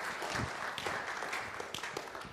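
A crowd applauds steadily, many hands clapping at once in a dense, continuous patter that holds at an even level for the whole moment, heard from within the room.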